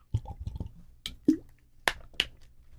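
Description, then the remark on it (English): Someone drinking water: a handful of soft, wet gulps and swallows with small clicks and sloshes, spaced irregularly and fairly quiet, with no talking. “I need to drink water or I will die.”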